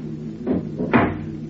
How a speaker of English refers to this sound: A slight noise at the door causes her to twitch restlessly, but she does not awaken, nor does she stir when the door opens softly and then closes.